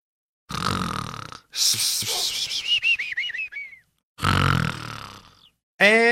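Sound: person imitating snoring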